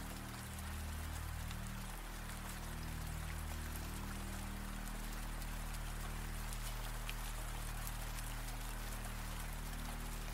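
Steady rain falling continuously, a dense patter of drops hitting surfaces with a low, constant rumble underneath, even throughout with no voices.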